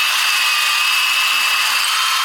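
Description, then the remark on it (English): A neighbour's power drill runs continuously with a loud, steady, high-pitched whine and a gritty buzzing edge, sustained without pause and with no voices. “Oh, God, my neighbour has started drilling again.”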